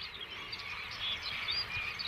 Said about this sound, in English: Oh, listen to that. Thousands of birds just swirling around. Something spooked them.